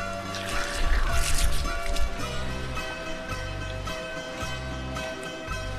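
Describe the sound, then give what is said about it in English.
Water is poured from a 1.5-litre bottle onto the roots of a sunflower on a beach at night, a gurgling splash that starts strong, then settles into a steadier trickle over a low outdoor hum. “bottle of water that I'm about to pour at the roots of the sunflower.”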